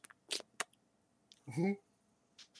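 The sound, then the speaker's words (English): A few quick, wet lip smacks pop, then a short voiced 'mwah' kiss sound follows, all made by mouth. “Smooches.”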